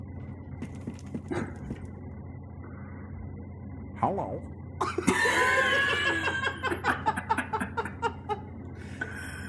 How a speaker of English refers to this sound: Oh, I would kill that bird.